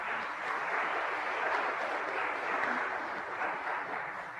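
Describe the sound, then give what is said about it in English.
A crowd claps steadily in a dense, even wash of many hands for several seconds, with no voices over it. “Would you give them a round of applause for what they've been doing?”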